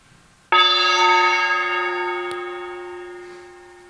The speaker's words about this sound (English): And so as I sound this gong, I invite you to just let that feeling tone of appreciation be your experience.